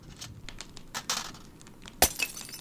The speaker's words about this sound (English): The loud crash made us both jump. A china cup smashed across the table, fallen from Koenig's hand.